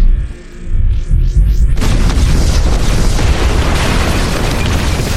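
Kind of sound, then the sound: sound effect, explosion boom sound effect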